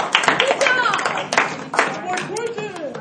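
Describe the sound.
An audience claps together in a steady, dense patter of many hands, with scattered voices calling out and talking over the applause throughout.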